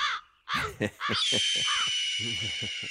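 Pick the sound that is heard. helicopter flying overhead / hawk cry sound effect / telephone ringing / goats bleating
hawk cry sound effect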